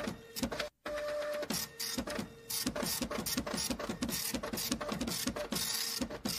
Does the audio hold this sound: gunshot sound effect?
no